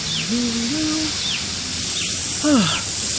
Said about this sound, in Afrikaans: Dit lyk maar bietjie kaal en droog. Wag, laat ek gou bietjie water gee terwyl ek hier is.